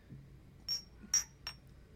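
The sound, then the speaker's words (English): Three bright glass clinks in quick, uneven succession, like glasses touched together in a toast, each with a short ringing tone, against a quiet, faintly murmuring background. “Cheers, everybody.”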